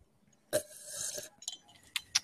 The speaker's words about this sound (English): But let me take another one here for you. You know, the ice swirling around. I put a little bit of ice in there for you.